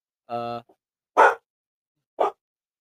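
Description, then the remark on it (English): A dog named Brody barks three times with pauses between: a drawn-out, whiny first bark followed by two short, sharp ones, with nothing else audible around them. “But, sorry, my dog is barking.”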